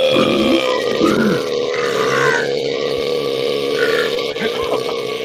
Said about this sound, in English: I burped too hard, it almost came out.